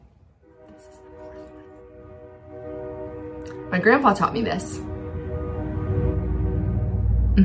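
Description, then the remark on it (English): A train horn blows a long, steady, droning blast as the train comes up on a road crossing, sounding without a break, while a person speaks briefly over it partway through. “Fun fact, did you know that when a train comes up on an intersection, they have to blow their whistle 4 times?”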